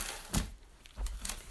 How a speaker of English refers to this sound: Oh, shoot. I just stepped on all the Christmas wrapping paper.